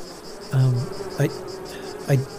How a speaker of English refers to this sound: Bees are territorial insects, and they only become aggressive when they're attacked or invaded. Oh, look, there's one. What kind of bee is that?